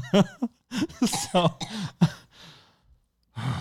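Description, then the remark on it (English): A burst of sputtering coughs and strained, gasping breaths from someone choking on water, ending in a raspy exhale and a final rough cough. “I just choked my water.”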